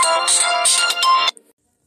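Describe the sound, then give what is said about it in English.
A loud, bright electronic phone ringtone for an incoming advertisement call plays a rapid melodic burst for just over a second, then cuts off abruptly with a brief faint trailing tone before silence. “I don't want to listen to these advertisement phone calls.”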